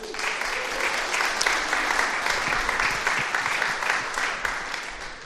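An audience breaks into a round of applause, a dense, steady wash of many hands clapping that holds at an even loudness for about five seconds before easing slightly at the end.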